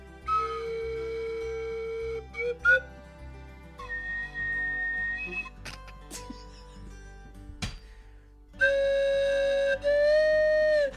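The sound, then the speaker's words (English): A slide whistle played in a pan-flute style: breathy, sustained pitched notes with short glides between them, over a low droning backing, fairly loud, ending on a strong held tone. “I've never heard somebody play the slide whistle like a pan flute.”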